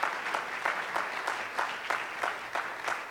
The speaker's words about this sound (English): Can we give God just a clap of praise this morning for the saving power of Jesus?